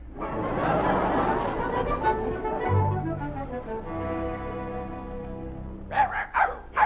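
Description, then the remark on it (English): Two dogs bark and play, with a stretch of whining, yipping noise followed by three or four quick, sharp barks at the end. No one speaks. “Bring in the mutt.”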